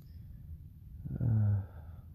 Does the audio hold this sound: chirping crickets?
no